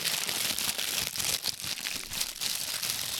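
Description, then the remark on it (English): The plastic packaging of a Chod toy figure body crinkles and rustles steadily as it is handled and opened, a dense, hissy crackle lasting a few seconds with no one talking. “You can open the Chod body. ASMR.”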